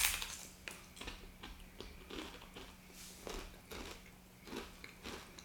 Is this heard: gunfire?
no